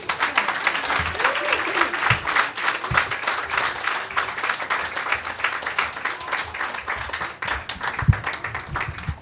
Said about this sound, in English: Every time I walk up, I'm just like, you can't hear me because you're clapping. I'm just like, It's like I'm eating like bacon or something.